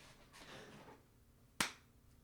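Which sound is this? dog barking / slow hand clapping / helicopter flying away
slow hand clapping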